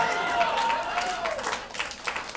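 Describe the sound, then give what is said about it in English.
A short burst of crowd applause, a dense, steady patter of many hands clapping at once for a couple of seconds, with a faint whistle-like tone gliding through the start. “Yeah, I give that applause break.”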